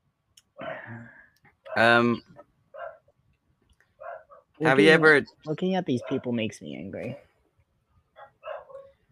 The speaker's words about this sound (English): Your dogs are going crazy in your background.